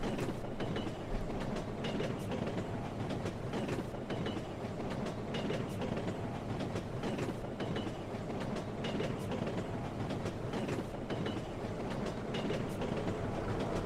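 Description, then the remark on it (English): A video game mine cart, which keeps moving faster and faster, rumbles steadily along its track, a loud continuous roar dotted with rapid clattering clicks from the rails, with no voices over it. “Oh, the car, by the way, keeps moving faster and faster and faster.”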